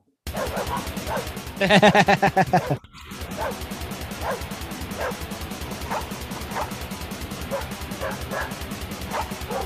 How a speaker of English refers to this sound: It's a grindcore, but the singer is a dog barking.